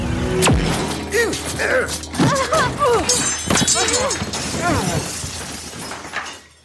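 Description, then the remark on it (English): A sudden loud crash with a shattering edge bursts out near the start as characters come crashing in through a badly executed teleportation spell, followed by a few more thumps and clatters while agitated voices carry on over the commotion. “Just as the Tarragon was poised to strike Anjelica, Bilsby and Jenna Kiss came crashing into her via the worst executed teleportation spell ever attempted.”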